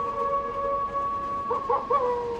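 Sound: wolf howl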